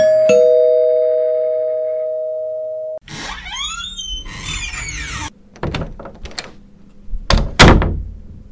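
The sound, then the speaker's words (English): A sustained electronic door chime rings, then a door squeals open on creaky hinges, followed by a few thuds and clatters as two students come through carrying their food. No one speaks. “Just joining us right now, we have two more students walk in the door with their food in hand,”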